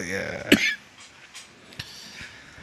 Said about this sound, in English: It's making me cough. That's for fucking sure.